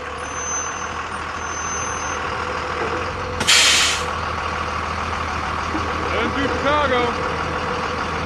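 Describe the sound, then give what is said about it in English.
A heavy city bus engine rumbles steadily, broken by one loud, sharp hiss of air brakes partway through, followed by a brief faint squeal as the idling continues. “Her mother would be at the convent today, and so Magda would walk to the next town over and take a bus into the city to find Vincent's parents.”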